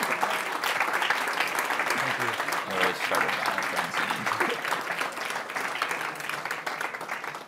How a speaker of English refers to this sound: Thank you to the 40 Farmlinkers in the crowd who started that standing ovation. Good to have inside people on the job.